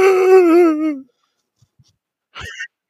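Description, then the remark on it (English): A voice imitates a dog's drawn-out, wavering scream, made while it plays with another dog, lasting about a second and loud, then after a pause a short, sharp yelp-like cry. “It's all just one dog. My original dog. And that's just him. He just screams.”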